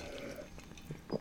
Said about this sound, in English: Sipping on some water cranberry. So I've got some about 85% water, 15% cranberry, like cranberry juice.